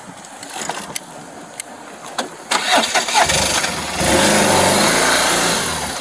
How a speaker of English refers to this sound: And then here we go on this piece of motorcycle.